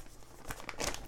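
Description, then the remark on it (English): Printed paper rustles and crinkles in a few quick, uneven bursts, fairly soft, growing busier toward the end as the sheets are taken out and handled. “Get my paper out.”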